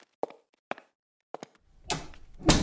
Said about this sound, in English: Out. And shut the door. I'm busy.